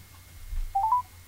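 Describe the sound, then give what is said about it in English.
A quick run of three short telephone dialing tones, clear and mid-pitched, beeping in fast succession over a low background hum, with no one talking, as a call is placed to a local Subway shop. “Can you plug it in and we'll put this on here so you can hear the dial.”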